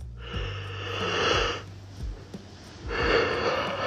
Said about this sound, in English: Excuse me, yawning like a motherfucker.